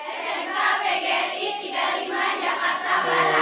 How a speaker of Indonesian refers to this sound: Dan sekarang kita coba sapa dulu yang ada di sini nih, buat bunda-bundanya dulu ya sayang ya. Ini bunda-bundanya dari majelis tali mana bun? Al-Hikmah Dramaga Bogor. Tepuk tangan dulu.